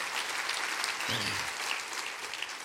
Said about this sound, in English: If you go ahead and clap, that's good. That's all right. That's all right.